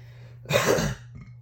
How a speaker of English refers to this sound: I just coughed and burped.